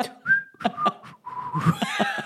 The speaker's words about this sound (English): I'm angry at my brother. The angry … whistle. Angry, yeah.